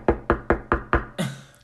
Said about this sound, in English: Knock, bitch.